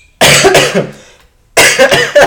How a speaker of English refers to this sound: I said I'm feeling better, y'all. If anybody that cares, then I start coughing. But I am feeling better, though. This is the first time I've coughed, and that is hilarious.